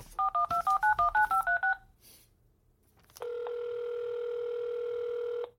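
A quick run of about eleven landline keypad dialing tones, evenly spaced and clear, followed by a short pause and then a long, steady telephone line tone. No one speaks.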